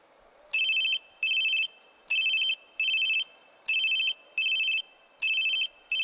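A telephone rings in paired electronic bursts during an outgoing phone call, two short trills, a pause, then two more, repeating four times with a bright, steady tone. No one speaks.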